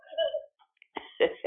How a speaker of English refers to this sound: Yeah, let's do it together. I got to clear my throat, too. Okay, 1, 2, 3.